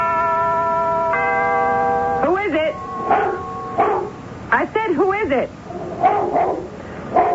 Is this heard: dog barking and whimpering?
yes